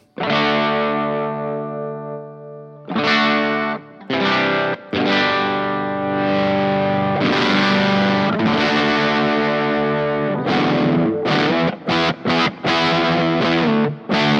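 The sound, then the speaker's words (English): A heavily distorted electric guitar, played through a custom-made pedal built in LA, plays alone, opening with a long sustained chord, then moving into gritty, buzzing riffs with sharp stops and choppy bursts near the end. “There's so I have different tones that I go to, and I had this guy make me a pedal in LA, which is one of my main sounds.”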